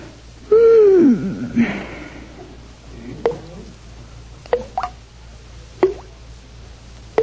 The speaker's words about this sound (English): Oh, goodness, the faucet in the bathroom's dripping. I'll never fall asleep now.